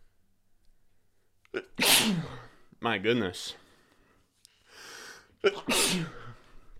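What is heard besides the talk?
sneezing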